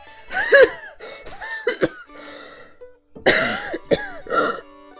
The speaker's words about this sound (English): Like, as he gets up, he kind of like grips the chair a little bit and he suddenly starts coughing.